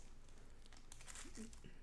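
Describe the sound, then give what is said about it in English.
Crinkling and rustling of plastic packaging being pulled open by hand, a run of short crackly bursts that grows busier before easing off, with a faint voice in the background. “So I've got mine about as open as I think I can get it without scissors.”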